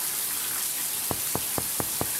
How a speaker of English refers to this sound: Oh, I'll stay. I'm in the shower. Oh, I'll stay. I said I'm in the shower.